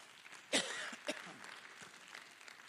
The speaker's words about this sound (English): Well, clap your hands to Jesus.